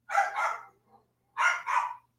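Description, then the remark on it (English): Dogs barking: two quick pairs of sharp, fairly loud barks separated by a short pause, with no one talking. “Yeah, and the dogs will sit and bark at you because they're stupid.”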